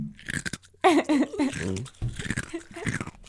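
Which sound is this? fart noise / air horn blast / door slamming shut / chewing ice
chewing ice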